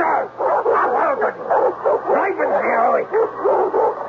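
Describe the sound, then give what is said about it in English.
A dog barks and snarls in a loud, nearly unbroken run of rough yaps and growls, the bursts coming rapidly one after another for several seconds. “seemed forever to be out of doors, roaming the property with his snarling dog.”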